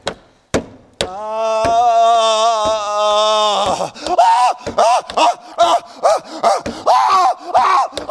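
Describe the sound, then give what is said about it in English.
A man imitates the screams of people in hell: one long, loud, wavering cry lasting a few seconds, then a string of shorter strained shrieks in uneven rhythm. A couple of sharp knocks, imitating pounding, come just before. “And the screams get louder as more people who die without Jesus spend an eternity in hell.”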